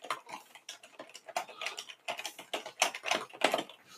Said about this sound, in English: He's typing it out. Can you hear it? Yeah, you can.